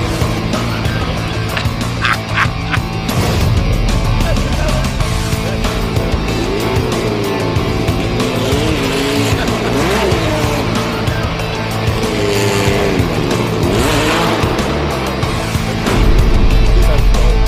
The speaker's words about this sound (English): I had the car, it was sliding, and I thought, I'm going to hit that. I thought, it's only going to be... Did it have the pegs in? No, they're made of solid lead. It damaged the back of my car.